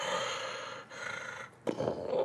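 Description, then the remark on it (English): A voice imitates heavy, rasping animal breathing: a long breathy exhale, a short pause, another drawn-out breath, then a sharp, louder gasp that carries to the end. “You don't hear a baying, but up on the right-hand side, like, up this kind of, like, maybe, like, 30, 40 feet embankment up onto this part of this valley, you hear paws scrabbling through dirt, and you hear just heavy breathing, like...”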